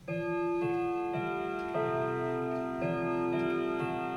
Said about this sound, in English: The clock needs winding every 3 days to keep it ticking and chiming.